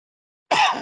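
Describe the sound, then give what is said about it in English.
A single harsh cough bursts out of silence, a short, rough, noisy blast that fades off quickly, with no talking around it. “And part of my coughing, I apologize.”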